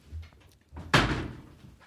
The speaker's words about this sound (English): Okay, I'm going to open the door. Okay.